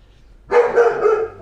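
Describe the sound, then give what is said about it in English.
A female dog gives a quick burst of sharp, loud barks at people outside the house, starting after a brief quiet moment and running together in a rough, yappy rhythm. “She's barking and farting.”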